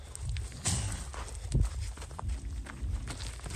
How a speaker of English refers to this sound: You can hear in between the shouts of no and go away, you can hear like gravel being disturbed. And that is this cat with both of its giant paws making some real aggressive lunges.